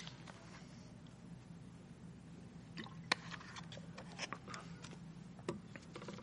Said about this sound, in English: I'm just going to take a sip of water first.